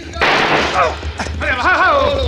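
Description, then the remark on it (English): A single loud gunshot cracks out and rings briefly, followed by agitated shouting voices over a low, steady rumble. “Now, Benton, watch this shot.”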